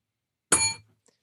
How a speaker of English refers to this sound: And so he started ringing a bell. And I thought, you know what? I need a bell.